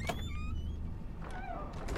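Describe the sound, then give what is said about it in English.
The mechanical exit doors of the Pizzaplex glide open with a soft motorized whir and faint sliding hiss, over a steady low hum, moderately loud, with no voices. “Gregory shook his hands to stop his fidgeting and walked through the exit doors.”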